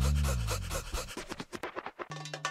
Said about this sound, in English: Bash Gruffy, get back, you flea infested mongrel.